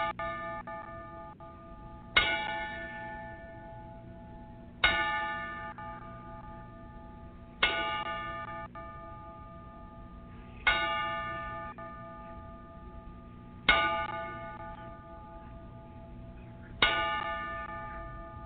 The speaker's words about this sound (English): Good evening, wrestling fans. Once again, we unfortunately have to open with a 10 bell tribute.